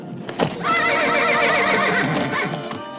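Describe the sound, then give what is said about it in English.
A horse lets out a loud, shrill, wavering whinny that stretches for a couple of seconds, sounding strained and distressed, preceded by a brief thud, as a rider deliberately digs spurs into its side. “The sound that the horse is making as she digs her spurs into the on purpose.”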